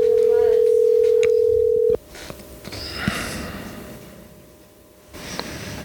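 A loud, steady telephone dial tone hums for about two seconds, then cuts off abruptly, leaving faint background noise and soft rustling.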